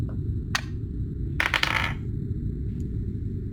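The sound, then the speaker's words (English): Dice rolled for a control con roll in a game, clattering across a hard surface: one sharp click, then a quick burst of rattling taps that settles within half a second, over a steady low hum. “This is a control con roll for you.”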